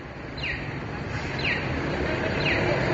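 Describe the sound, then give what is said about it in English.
A pedestrian crossing signal on 2nd Street in San Jose, meant to let blind people know when to cross, chirps three times at steady one-second intervals, each a short descending electronic tweet, heard over a constant wash of street traffic noise. “tells us to cross 2nd Street because that was not birds chirping, it was the signal.”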